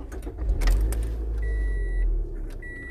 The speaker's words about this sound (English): I'll start my car.